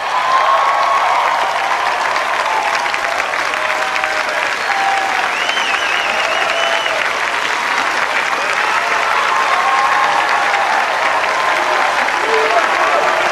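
A large crowd gives Donald Trump a standing ovation during his speech, with sustained, thunderous applause, cheering and scattered shouts: a dense steady roar of clapping that stays loud for the whole stretch with no speaking voice over it.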